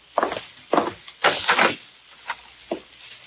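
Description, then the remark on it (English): A cellar door scrapes open with a woody rumble, followed by a few uneven, hollow footsteps thudding, with no talking. “Let's see, the door to the cellar's over here, isn't it?”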